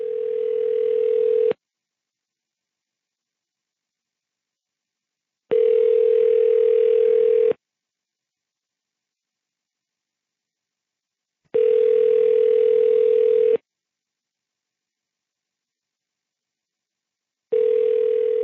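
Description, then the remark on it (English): A telephone ringback tone from an unanswered call to the Tajik Embassy on New Hampshire Avenue in Washington, D.C.: steady electronic burrs about two seconds long, separated by four-second silences, repeating four times, clear and loud with no voices. “So I looked at the Tajik Embassy, which is on New Hampshire Avenue in Washington, D.C., and called them up.”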